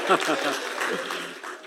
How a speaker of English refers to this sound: Can I get an amen? Amen. Yeah, let's give a hand clap. Praise God.